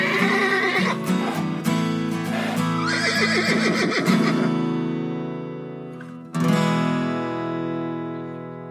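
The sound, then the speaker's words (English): Loud horse neighs and shrill squealing whinnies overlap for several seconds, then a second sharp neigh bursts out and trails off, as two domestic palomino horses fight each other to decide which one is in charge. “Two domestic palominos fight each other to decide.”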